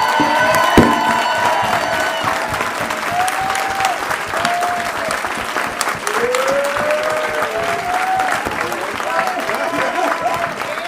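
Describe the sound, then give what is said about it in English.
Loud, sustained applause from a crowd as the last guest of the evening, Chaka Pilgrim, is introduced, dense crackling claps with rising whoops and cheers riding on top. “Give the biggest round of applause to Chaka Pilgrim.”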